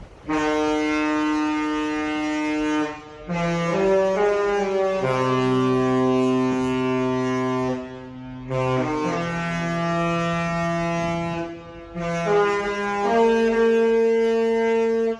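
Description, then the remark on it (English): A deep, loud cruise ship horn sounds in several long sustained blasts with shifting chord-like tones, separated by brief gaps, with no talking. “It means I was on the love boat.”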